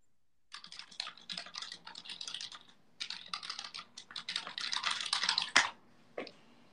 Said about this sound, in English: Keyboard warriors at it again. That's me. Yes, it is. I am the keyboard warrior. I am typing in to the thing and letting them know